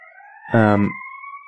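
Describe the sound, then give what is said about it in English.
An ambulance siren passing outside holds a steady, slowly rising wail at moderate volume in the background, while a person briefly speaks over it partway through. “Oh, hey, there's an ambulance.”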